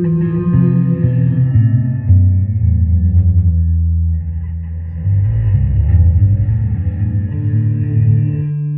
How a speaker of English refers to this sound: So, this is my Kick-Ass bass amp. Pretty Kick-Ass. Let's see. It's got a reverse delay, or reverse reverb. Let's see what that sounds like.